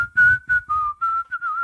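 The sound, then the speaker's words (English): Someone whistles a short melody, clear tonal notes that dip and rise in pitch across a few phrases, with faint breathy noise underneath and no talking. “Whistling.”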